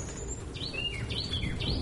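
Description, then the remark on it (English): Several quick, bright bird chirps with sweeping upward and downward whistles, repeating over steady outdoor background noise, clear. “That fucking bird.”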